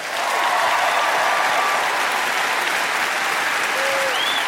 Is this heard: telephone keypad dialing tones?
no